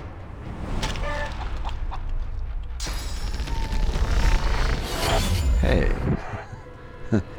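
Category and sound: sound effect, chicken clucking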